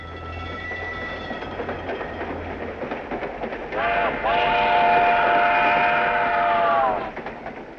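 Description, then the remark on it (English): A moving passenger train rumbles and rattles steadily, then a loud, sustained multi-tone whistle blares for about three seconds before cutting off, leaving the rolling clatter of the cars. “Dietrichson and pretend to fall off of the back of the train.”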